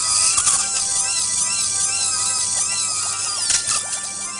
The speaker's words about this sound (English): But no, I was calm. Almost absurdly calm as the doctor drilled and poked and prodded.